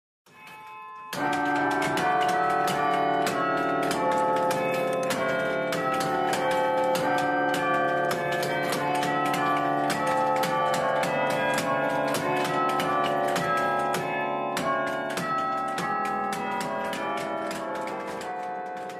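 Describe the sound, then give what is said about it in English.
The 35-bell carillon in St. John's Kirk rings out continuously as its player strikes the pedals, layered with steady mechanical clunks and knocks from the pedals, a rapid irregular thudding that stands out against the ringing tones. “In fact, you can hear in that, what you hear more than the bells is the sound of him whacking these pedal things.”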